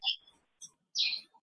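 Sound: birds chirping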